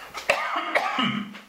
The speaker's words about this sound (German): Jetzt muss ich mal husten, was Daniel Barenboim in Konzerten nicht leiden kann. Aber ich habe hier keine Wegdrücktaste.